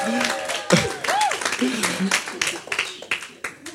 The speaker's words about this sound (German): Einmal einen Applaus